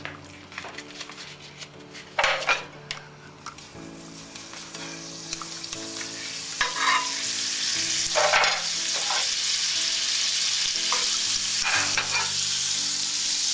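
Margarine melting in a hot frying pan before frying blintzes, the sizzle building from a light crackle to a steady, loud hiss, with a few scraping clinks of a utensil against the pan along the way.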